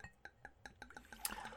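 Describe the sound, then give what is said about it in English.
Black cherry wine glugs into a vodka glass in a quick, steady rhythm of liquid pulses, ending in a brief splashy rush as the pour fills. Quiet, with no talking. “Ooh, just popped that black cherry. What's a black cherry? Don't ask. Don't ask that question if you don't want the answer. We about to pour this.”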